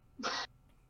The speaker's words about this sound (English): Bless you.